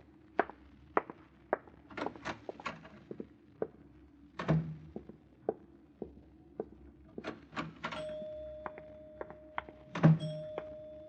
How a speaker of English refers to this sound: I rang the elevator bell for us.